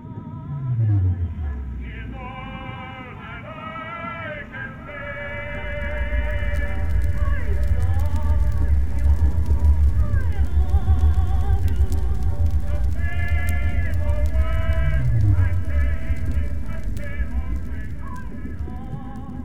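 Whale song with deep, downward-sweeping moans at the start and again later, mixed with wavering, higher-pitched harmonic cries over a continuous low underwater rumble.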